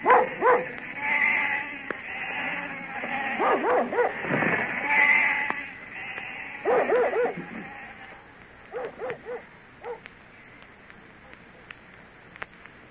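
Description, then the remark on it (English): A flock of sheep bleating as they're driven off, many wavering calls overlapping at first, then thinning to scattered, quieter bleats toward the end. “That's the last we'll see of the sheep till summer's over.”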